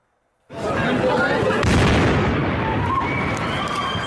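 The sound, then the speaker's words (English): Out of silence, a sudden loud explosion from an attack erupts on a packed pedestrian street in Istanbul, Turkey, then a dense roaring rumble carries on for several seconds, with faint cries and voices rising through the noise. “And we have new video this morning showing the moment that an explosion ripped through a packed street in Istanbul.”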